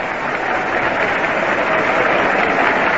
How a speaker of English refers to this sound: Richly deserved the applause that Gerber gets now as he walks up to the plate.